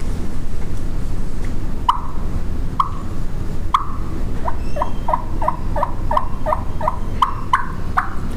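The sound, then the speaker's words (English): Soft turkey clucks and yelps blown on a cutter call, with the air channelled over the right side of the call to stop the top reed fluttering: a few spaced single notes followed by a quicker run of short yelps, with steady low background noise and no talking. “So on the cutter call, over to the right of that call, I can stop that top reed from fluttering and get the softer calls, the softer clucks, and the softer yelps.”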